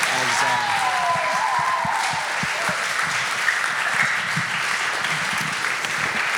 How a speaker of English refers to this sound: Thank you guys so much. Let's give a round of applause to the panel.